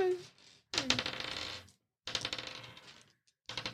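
Dice clatter and rattle across a surface in three separate practice rolls, each a quick tumbling roll that settles, fairly loud.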